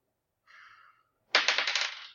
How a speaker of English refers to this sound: Don't touch my dice anymore. Okay, here's the thing. I rolled a 1, but I get a bonus.